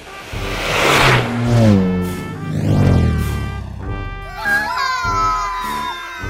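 A high motorized whine rises and falls as an electric scooter speeds past, its pitch sweeping with the pass, followed by more revving whirs and children's shouts.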